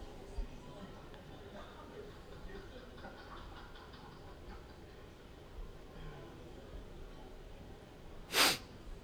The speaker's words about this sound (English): Oh, pardon my sniffle.